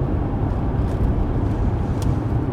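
A steady, low rumble of a car rolling along the road, holding constant throughout, with no voices and no distinct events breaking the continuous drone.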